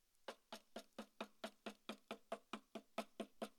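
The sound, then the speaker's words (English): A rapid, steady series of about fourteen sharp knocks on a hard surface, evenly spaced at roughly four per second, fairly quiet, with no talking. “What does a knock sound like, church?”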